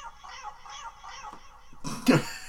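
A cat sound effect: several short, repeated meow-like cries in a steady rhythm, followed by a louder, harsher yowl or hiss burst near the end, with no talking.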